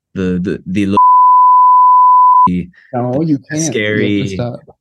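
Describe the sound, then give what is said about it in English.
A single steady, high-pitched beep holds for about a second and a half, loud and clean, cutting in between bursts of people talking. “I guess, all right, there's a beep.”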